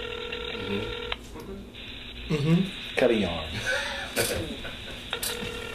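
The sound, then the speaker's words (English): A phone line's ringback tone purrs steadily at the start and returns near the end, with a man talking and a woman chuckling between the rings, as a call is made from a co-host's phone. “Yeah, why did you call from my phone? But you could call from your phone.”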